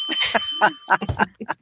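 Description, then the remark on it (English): A bell rings with steady, sustained high tones that hang under bursts of people talking and cheering, fading out by the end. “Yay, and there's a bell ringing.”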